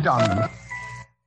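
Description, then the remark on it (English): A single sneeze: a rising voiced 'ah' that breaks into a sharp, breathy burst, then a quieter steady tonal hum lingers for a moment before stopping. “Bless you.”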